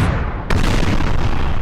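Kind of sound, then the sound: sound effect, fireworks exploding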